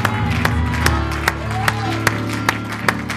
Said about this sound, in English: Give the Lord a hand clap of praise before you're seated. Hallelujah.